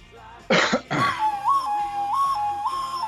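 A person coughs twice, then whistles a short, steady tune as a tribute to actor Luke Perry, holding mostly one pitch with a few brief upward steps, without any talking.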